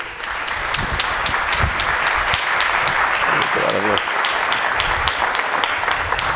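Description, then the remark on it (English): A live audience at a stage event near King's Cross, London, claps steadily throughout to greet the hosts' entrance, a moderate, even patter of many hands, with a brief voice rising above it midway. “That was the very definition of a ripple of applause.”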